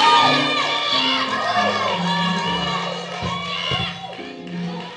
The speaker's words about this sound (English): Y'all were shouting, so y'all didn't hear what I just said.